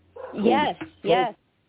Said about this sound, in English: Sorry, my dog started barking, so I couldn't hear what you said.